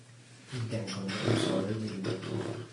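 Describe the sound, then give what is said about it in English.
A female dog makes low, drawn-out grumbling and whining noises, a continuous throaty vocalization lasting a couple of seconds after a brief quiet start. “Our dog is so sweet.”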